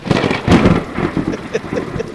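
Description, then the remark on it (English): A loud crack of thunder bursts out and rolls into a low, sustained rumble, with a hiss like rain underneath, for about two seconds with no voices. “Oh, we need like a, okay, we need like a sound effect, like a bolt of thunder.”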